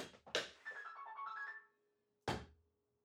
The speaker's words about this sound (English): I apologize. I thought I put my phone on vibrate.